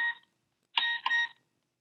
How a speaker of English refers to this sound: I'm sure I put this on silent, but I still not figured this phone out.